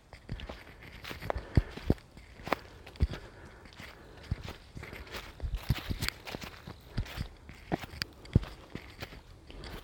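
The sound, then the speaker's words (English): Footsteps plod uphill at a steady, slightly uneven pace, each step a sharp crunchy thud over a low rustling background, with no one talking. “Oh God, I'm grinding up this hill. I'm just grinding up it, grinding.”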